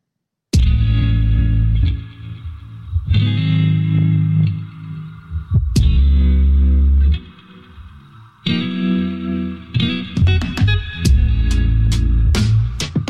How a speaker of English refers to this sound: You can catch this song, though, on my playlist of Vibes Sold Separate. And all the links will be below.